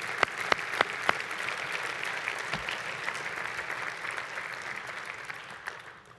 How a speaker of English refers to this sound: Would you stand? Let's give the Lord a clap offering together, everybody. Here we go. Clap offering for Jesus.